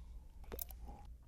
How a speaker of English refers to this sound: I'm going to pour you a little bit here. Thank you. And then we're going to take a sip here.